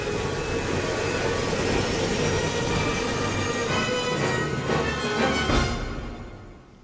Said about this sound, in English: How long until takeoff? 7 minutes, sir. Just warming up the engine.